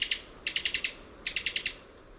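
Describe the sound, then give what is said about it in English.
A Cuban Tody, a tiny West Indies bird, gives rapid staccato call bursts: a short pair of notes, then two quick series of about five sharp, high chips each, against a soft background hiss. “This staccato call comes from the throat of a Cuban Tody.”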